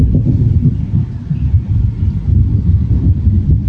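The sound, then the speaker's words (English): Continuous low, rolling rumble of thunder that swells and eases in waves throughout, deep and steady with no voices present. “And on that inhale, there's thunder coming.”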